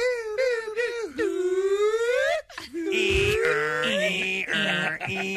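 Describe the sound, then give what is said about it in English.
A voice imitates a Viper car alarm, looping through rising and falling wails, then switching to loud, steady high-pitched warbling tones, continuous for about five seconds with no other talk. “The classic Viper alarm.”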